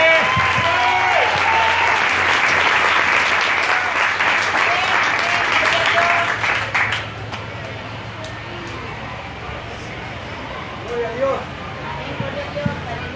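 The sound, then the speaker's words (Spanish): An audience at a church service bursts into loud, sustained applause with scattered cheers, answering the pastor's call to applaud loudly if they believe: dense clapping for about seven seconds before fading into a softer murmur of voices and a few lingering claps. “Si usted lo cree, déle el aplauso fuerte.”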